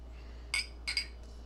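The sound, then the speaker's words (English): Maker's Mark glasses holding Jim Beam clink together in a toast: two bright, ringing taps, then a quick third and a faint fourth, over a quiet low hum with no one talking. “Well, before we get started, see the obligatory cheers.”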